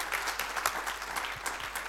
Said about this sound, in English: Can we give another round of applause for the panelists? Great job, guys. Well done. Well done.